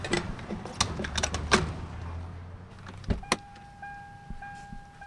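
Clicks and rustling of someone climbing back into a car after filling it with gasoline, over a low engine rumble, then a solid door thud followed by a steady mechanical whine as the vehicle drives off.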